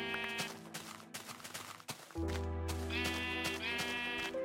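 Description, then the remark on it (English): Sheep bleat repeatedly in a video game, several overlapping nasal baas ringing out loud over a steady low droning hum, with no talking. “Did I pass up all these sheep? Or did they just spawn?”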